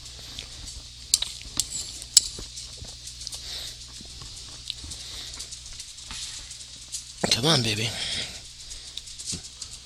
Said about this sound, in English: There you go. My dog likes licking the bowl. Can't blame her. Ice cream's damn good.